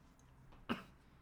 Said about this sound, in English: And … won't stop coughing.